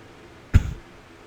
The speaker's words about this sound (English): I'm trying so hard to hold this cough back.